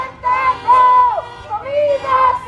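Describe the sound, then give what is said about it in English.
Demonstrators at a street protest for renters in the Boyle Heights neighborhood of Los Angeles, during the COVID-19 pandemic, shout "no to rent, yes to food" in loud, drawn-out bursts. Their raised voices rise and fall over a steady murmur of crowd noise. “Shouting no to rent, yes to food, demonstrators said the city of Los Angeles isn't doing enough to protect renters during the COVID-19 pandemic.”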